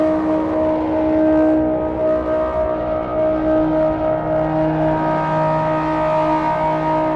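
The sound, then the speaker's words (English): A steady modular synthesizer drone from a subharmonic patch using Maths and the Rampage, mixed through the MC3A, built on low subharmonic tones, with sustained layered pitches that shift slightly over time, loud and continuous with no voices. “I think this is a nice drone.”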